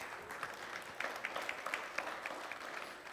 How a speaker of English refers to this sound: Listen, I don't need your applause.